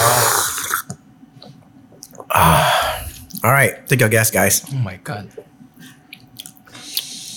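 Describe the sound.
Crisp, crunchy bites into a long chocolate swirl cookie stick, followed by a wet dunk into liquid, with people talking and exclaiming in between the noisy bursts.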